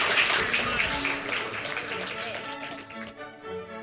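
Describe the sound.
An audience applauds in a steady, dense wash of clapping that tapers off after a couple of seconds as a voice starts to come through.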